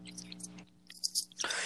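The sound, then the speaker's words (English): Wet crunching and chewing of a 5-inch pickle, with a few sharp bites followed by a burst of louder crunching. A faint low hum and soft breathy whispering sit underneath. “Time to go in for another crunch.”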